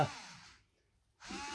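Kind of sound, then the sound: household object, pencil being sharpened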